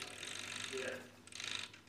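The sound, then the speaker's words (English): Two bursts of rattling, ratcheting metal as the chains of a clock with pine cone weights are pulled to wind it, the first lasting about a second and the second shorter after a brief pause, with a busy clicking texture. “I got to literally pull the chains so the clock keeps ticking.”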